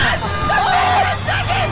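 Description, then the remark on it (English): The horn of a passing orange Falcon car beeps loudly over road traffic in Newmarket, during a 60-second timed attempt to get a beep, with people talking and exclaiming around it. “Was that a truck? My gosh! No, that was a falcon, an orange falcon.”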